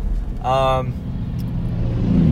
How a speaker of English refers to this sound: That's a nice semi.